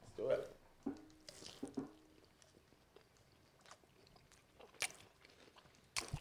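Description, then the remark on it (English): Chewing and smacking noises into a microphone, wet and irregular, with a few sharp clicks and crunchy bursts. “Stop chewing in your microphone.”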